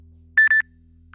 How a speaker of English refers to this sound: Sorry about that. I had a phone call come up. Yeah. Can someone text her and tell her not to call? Yeah, right now. Sorry. I didn't turn off my ringtone for the recording and everything.